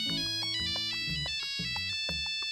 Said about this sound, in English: And 2 hours later, he came with the solution, and that is actually some notes and a piece of Tarega's Grand Waltz from the original Nokia commercials that then became this famous sound.